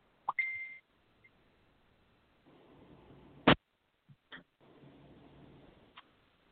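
A brief electronic beep over a telephone line, followed by scattered clicks, stretches of faint hissing line noise and a sharp crackle, as if a call is cutting out.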